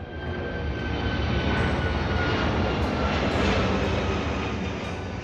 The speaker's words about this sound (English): If you can choose, it's much better to live near the arrival runway and not the departure runway. Planes power down to land, but they are at full roar to take off.